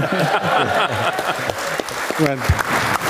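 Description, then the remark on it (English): A run of sharp, uneven hand claps from one person, patting away for a few seconds while voices talk over them. “Okay, clap for myself there.”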